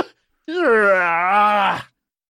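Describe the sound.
A person lets out one long, exaggerated vocal yawn imitating another person's yawn, a sustained drawn-out groaning tone lasting over a second, fairly loud, with a brief breath just before it.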